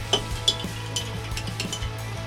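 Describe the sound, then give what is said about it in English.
A spoon stirring a cocktail, a tequila variation of a bee's knees with Angostura bitters, with light metallic clinks and soft swishes repeating unevenly for a couple of seconds over a steady low hum. No one speaks. “And then we could take our little spoons mm-hmm. and just stir this up nicely.”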